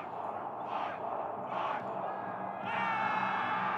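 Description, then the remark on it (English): A large crowd roars continuously as it rushes the field at the stadium, home of the Minnesota Vikings, during the Indigenous Bowl closing ceremony, celebrating both teams, with voices shouting and whooping over a dense wash of cheering that swells louder toward the end. “the crowd rushed the field celebrating both teams, with families and friends embracing.”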